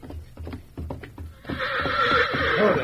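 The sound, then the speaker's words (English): A stallion's hooves clop in an even rhythm, then the horse breaks into a loud, quavering whinny that rises and falls for over a second, with no one talking. “Hey, that stallion's still acting up in the lean-to.”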